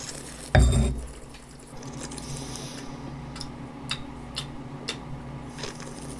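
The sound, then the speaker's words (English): A wine glass is lifted with one sharp knock against a hard surface, then a few soft, brief clicks follow during quiet handling as a person takes a first sip to taste the wine, with no voices. “Okay, I'm gonna finally put my tongue where my mouth is. My glass where my mouth is?”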